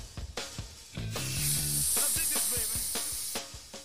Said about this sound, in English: I just sprayed this One Shot in my basement. It's for total release fogging and spot spraying. One Shot After Fire Odor Control.